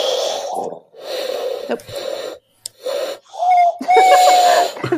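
Someone blows through clasped hands in about six breathy, airy puffs, rough and noisy, until the last attempts produce a wavering, hollow low whistle like a faint hoot.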